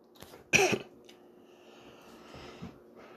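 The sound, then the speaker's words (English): A single sharp cough bursts out, followed by some quieter throat noises and breathing. “Excuse me, I had a little cough there, but once again, I ain't editing, but if you hear me cough, sorry.”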